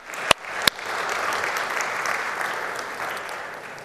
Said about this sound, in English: Good morning once again. We give our kids a round of applause one more time. They did a good job this morning.